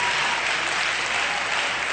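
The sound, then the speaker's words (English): An audience claps steadily together while praising God, a dense, continuous wash of hand claps at constant loudness with no voices standing out. “Let's clap our hands and let's praise him together right now.”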